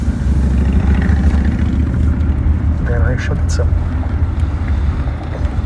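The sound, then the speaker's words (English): A heavy, continuous low rumble of big trucks passing fills the whole stretch, steady and loud, with brief muffled voices and higher noises rising above it midway. “That happens when there are big trucks over here.”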